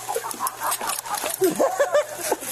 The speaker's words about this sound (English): Police were called because the hen was blocking someone's front door. Yeah, that's a chicken. And if it was a rooster, I ain't touching it.